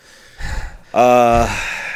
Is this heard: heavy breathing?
yes